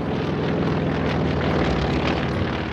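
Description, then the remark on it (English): A propeller airplane drones steadily overhead, its engine a loud, continuous buzzing roar with a throbbing low hum, holding constant throughout with no voices. “Amelia Earhart is most famous for being the first woman to fly a plane by herself across the Atlantic Ocean.”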